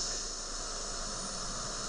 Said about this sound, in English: So we're on the bridge. It's starting to rain. Shit.